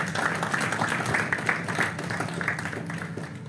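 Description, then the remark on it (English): At a Christmas gathering, an audience applauds steadily as a team comes back up, a dense wash of many hands clapping at once with no clear individual rhythm, holding at a fairly even loudness throughout before easing slightly at the end. “Give them a hand clap as they come.”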